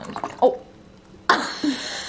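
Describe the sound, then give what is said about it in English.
A drink is poured and spills onto a table, starting with a short splatter, then a louder gush that spills and trickles for a moment before fading. No one speaks. “Wait a second, that's not how you pour a drink in there.”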